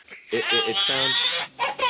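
A tired toddler, ready for bed, fusses, letting out a string of short, whiny, broken cries that rise into a longer drawn-out whimper before trailing off.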